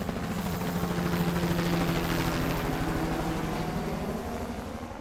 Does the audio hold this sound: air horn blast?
no